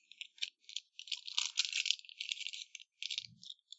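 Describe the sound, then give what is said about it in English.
Crinkling and crunching of a paper receipt being pulled out of a back pocket, a busy run of dry, irregular crackles and clicks, with a soft low bump near the end and no voices. “Crunching and clicking. Pulled a receipt out of my back pocket.”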